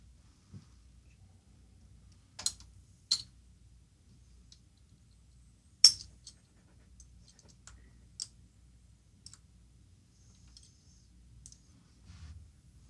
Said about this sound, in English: Dice catapult. Is that dice launcher?